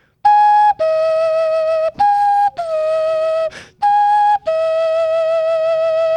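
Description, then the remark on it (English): A Romanian clay cuckoo-bird whistle blown loud and clear, repeating a two-note high-then-low call about four times, with the lower note held longer. No one speaks. “This is a Romanian cuckoo bird made out of clay.”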